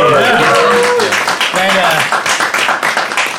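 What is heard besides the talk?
audience applause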